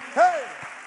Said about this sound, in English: In Jesus' name, can you clap your hands to the Lord one more time?